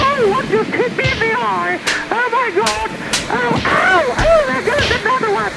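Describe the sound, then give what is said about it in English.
A handful of sharp, loud slaps crack out at irregular intervals, each a quick smacking impact, while excited voices talk and exclaim over them. “Listen to them slapping. Oh, they're slapping.”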